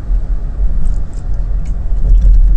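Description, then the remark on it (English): Steady, heavy low rumble of a car driving on the way to work, heard from inside the cabin, with constant road and engine noise and faint higher hiss, no talking. “So, I normally try to say this towards the beginning of the episode, but if you're listening for the first time and for some reason you've made it this far, I record this on the way to work.”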